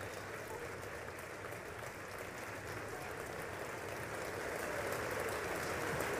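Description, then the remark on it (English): Sustained applause from a large crowd of Republicans on the US House of Representatives floor as the Speaker of the House for the 118th Congress is elected, a dense, steady wash of clapping that holds level and swells slightly louder toward the end, with faint voices mixed in. “Republicans applauding following 22 days of chaos without a Speaker of the House.”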